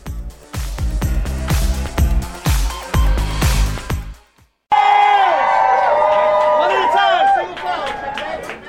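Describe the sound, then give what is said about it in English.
Loud, sharp bursts of clapping from a masked Broadway theater audience at Hamilton in New York's Theatre District, on reopening after the 18-month COVID shutdown, then after a brief pause a roaring crowd breaks into sustained cheering with high, rising whoops and shouts. “And roaring applause was heard for the first time since the COVID shutdown.”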